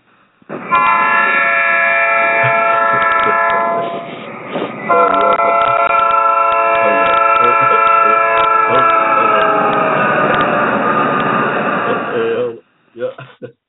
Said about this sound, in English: when you hear that horn, y'all, that westbound number 9 coming down the line, y'all duck and get out the way, y'all, because you know something's coming at you.